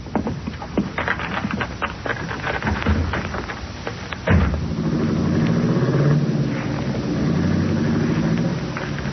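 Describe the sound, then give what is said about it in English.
A car engine starts with a sudden burst after a few seconds of rattling, bumping noises, then settles into a steady, loud low rumble as the car pulls away. “Let's get in the car and scram.”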